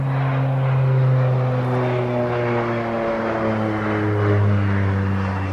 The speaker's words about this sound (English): their private jet, someone's private jet. It's a small plane.